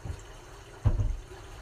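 nature, flowing river water

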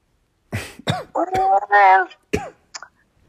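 human body sound, coughing

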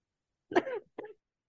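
human body sound, coughing

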